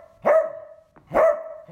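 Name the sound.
pointer dog barking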